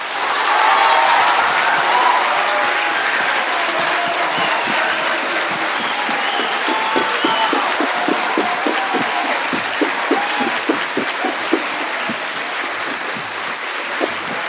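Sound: audience applause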